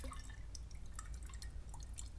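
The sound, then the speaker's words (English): Coffee trickling through a Chemex brewer: a steady, soft liquid flow dotted with quick, bright drips and splashes, continuing evenly for a couple of seconds with no voices. “This is what you can achieve with a Chemex. It's quite hard to achieve with any other brew method.”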